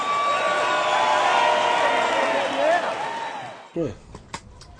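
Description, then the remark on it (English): A crowd cheers loudly and steadily, with a small group's whooping voices rising above the roar, then the noise cuts off abruptly into a quieter stretch with scattered knocks and a brief voice. “And we happen to be the only ones in our area that was cheering”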